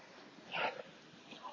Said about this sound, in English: Dog barks and whimpers.